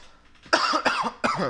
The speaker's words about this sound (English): This is a mean cough.